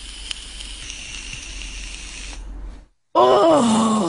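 A long, steady airy hiss of someone drawing on a vape pen nicknamed Sippy for about two and a half seconds, a brief pause, then a loud, voiced groaning exhale.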